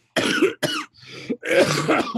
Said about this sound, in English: Now he's blaming a cold for his coughing problems. More excuses from you.